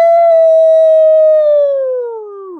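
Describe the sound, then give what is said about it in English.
An alarm sound effect: one loud, steady siren-like tone that holds its pitch, then sags lower and fades out over a couple of seconds. No one speaks. “While we're on it, why don't we just sound off the DB alarm?”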